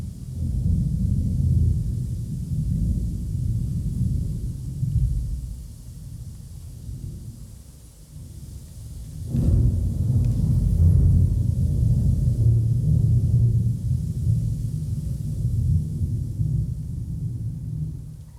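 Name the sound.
thunder sound effect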